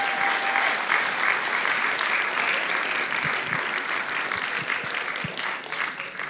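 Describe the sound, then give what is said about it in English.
An audience claps steadily for several seconds, a dense, even wash of applause that stays loud throughout with no one speaking over it. “Come on, let's give Malcolm a round of applause.”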